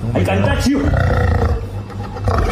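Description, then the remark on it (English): A big cat roars loudly, a deep, rumbling, growling roar that holds for about two and a half seconds, swelling again near the end. “He thinks it's funny. Silly kitty.”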